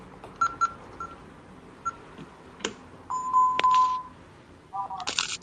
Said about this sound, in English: Let me see. What are you using, the microwave? No, I was turning on the alarm. Sorry.